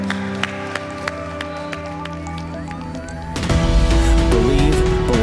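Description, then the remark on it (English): Soft sustained music plays with a few sharp taps, then an audience at Foundations Church breaks into loud, dense applause for seven individuals, swelling over the music for the last couple of seconds. “Can we give these seven individuals a raise our hand? A huge round of applause.”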